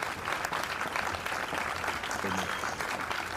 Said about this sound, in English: Well, I'm about to applaud this.